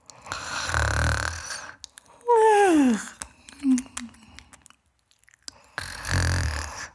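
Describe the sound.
A voice imitates a baby snoring: two long, rasping snore breaths, fairly loud, separated by a falling, whistly exhale and a couple of soft little grunts.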